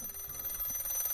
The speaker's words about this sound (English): Is that your phone or is that a rotary phone? What are you using?